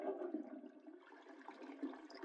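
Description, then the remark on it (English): A loud toilet flushes in the bathroom of a one-room HDB flat with a steady, rushing gurgle of water that fills the whole moment without letting up. There is no talking, just the continuous swirl of the flush. “There's a loud flush.”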